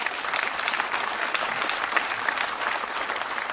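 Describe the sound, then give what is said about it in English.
An audience claps steadily for a few seconds to show appreciation for a woman who came out to speak, a dense, even wash of many hands with no voices rising above it. “Her favorite thing is applause, too, by the way, and being recognized.”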